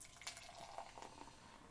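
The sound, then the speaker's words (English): A light pale ale with blueberry pours steadily into a glass for a couple of seconds, a continuous soft gurgling splash with faint fizz. It is fairly quiet, with no voices. “And the pour?”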